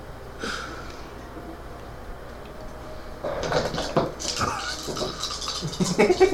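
Dice are picked up by the players of a game and clatter and rattle in quick, irregular bursts that grow louder toward the end, with a faint voice briefly audible underneath.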